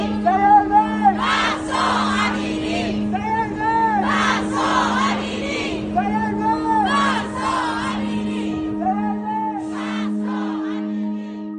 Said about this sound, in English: But one of the predominant chants you hear is people saying, say her name, Mahsa Amini, so she's not forgotten.